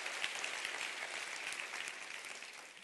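An audience claps their hands in a steady, dense wash of applause, many overlapping claps blending into a loud, continuous crackle with no voices rising above it.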